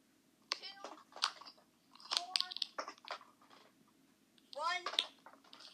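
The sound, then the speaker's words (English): Five dice clatter and rattle in a few quick bursts as a player rolls them for a game move called Steam, clicking against a hard surface. Soft voices are faintly audible between the rolls. “So I'm going to roll them.”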